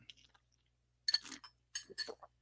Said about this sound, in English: let me get a quick sip here. Hold on a second.